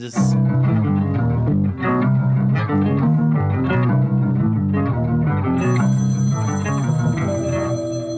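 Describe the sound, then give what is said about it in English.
A telephone ringing with a warped, eerie electronic tone, loud and continuous, layered sustained pitches shifting in steps, with a thin high whine joining near the end. “That's an eerie phone call.”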